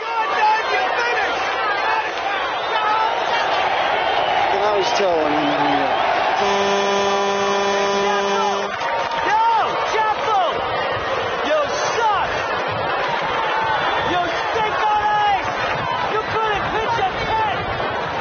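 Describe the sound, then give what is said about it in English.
A large baseball stadium crowd roars continuously at a visiting pitcher on the mound facing the New York Yankees, a dense wash of cheering, shouting and jeering voices, with a loud sustained horn blast cutting through midway before the din carries on. “The crowd is brutal.”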